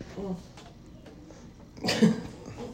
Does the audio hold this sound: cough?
yes